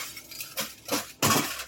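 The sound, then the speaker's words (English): A cup thrown across a room smashes on a hard floor: a couple of sharp clinks, then a loud crash as it shatters, with bright scattering fragments ringing briefly afterward. No voices. “Something just threw a crumb cup across the room and it shattered.”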